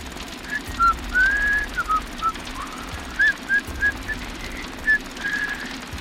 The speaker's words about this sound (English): walked beyond the light of the looming Wicker Man, whistling as he went.